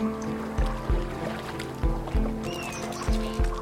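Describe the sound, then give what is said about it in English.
A paddle dips and pulls through the water of the Zambezi River from a three-seat canoe in steady paired strokes about every second, with soft splashing, a low steady hum and a faint bird call in the background. “And their job is just to sit back, relax, and just enjoy being paddled down the mighty Zambezi River.”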